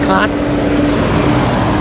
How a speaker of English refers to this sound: Since we're on location, we have some nice trucks moving everywhere. It's very much an industrial area.